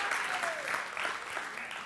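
A church audience applauds a pastor in a steady, dense wash of clapping that holds at an even level throughout, with a faint murmur of voices mixed underneath.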